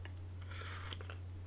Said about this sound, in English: So I just sipped my coffee.